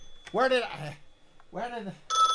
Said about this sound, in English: Phone's ringing. Where did I leave the phone? Where is it? Can't remember where I left the damn thing. It could be that woman from the voiceover place calling. Where did I leave the phone?